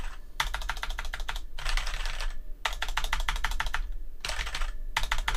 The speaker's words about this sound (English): And they're just typing the one word over and over and over again because they don't know how to spell authenticator.